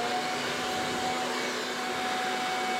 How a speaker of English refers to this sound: Instead, my dad happened to have a modern alternative sitting in his garage. Hurricane power leaf blower.